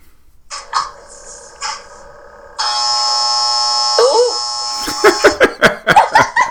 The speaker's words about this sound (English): Ooh. Was that your dryer? Clothes ready. Big laundry. Doing laundry at what time is it? 11 o'clock at night. 11:30.